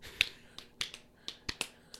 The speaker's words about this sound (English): We've never clapped for ourselves, but I feel like post BravoCon, I feel like oh, I don't know.